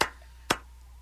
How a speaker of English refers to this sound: Wow. That's the Viking clap. So they have no rhythm.